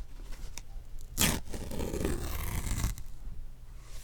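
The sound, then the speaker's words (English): Craft foam cut on a Cricut being ripped apart by hand to get the pieces out: a sharp initial tear followed by a sustained, crispy crackling rip lasting over a second, then quiet with faint background hum. “It's the sound of me ripping apart the craft foam because the Cricut doesn't really go all the way through, or at least the setting I have it on doesn't go all the way through, so I have to rip it apart to get the pieces out.”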